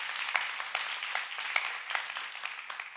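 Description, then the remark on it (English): An audience claps their hands in a steady, dense patter of applause lasting a few seconds, at moderate volume with no voices over it. “I think you should clap your hand and say amen on that one.”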